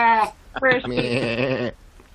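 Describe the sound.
A person voices a wavering, nasal sheep-like bleat, a short burst followed by a longer quavering "baa" held for over a second, fairly loud, then silence.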